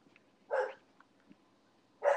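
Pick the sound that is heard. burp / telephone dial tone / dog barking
dog barking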